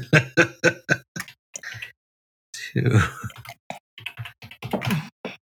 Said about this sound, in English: I like how you did the math. I just did. I pulled out my calculator. I heard the ticking.